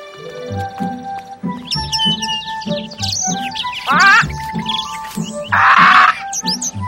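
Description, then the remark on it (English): Birds chirp and tweet busily over a steady rhythmic low thumping, with bright trills and a burst of dense, buzzy twittering near the end; no one speaks. “Can we look at the birds?”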